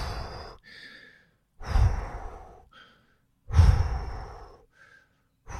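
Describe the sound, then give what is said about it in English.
Heavy, steady breathing while running, about 2 km into a run past a hill, with long, loud exhales alternating with shorter, quieter inhales in an even rhythm, and no talking. “So the breathing is more silent, more steady.”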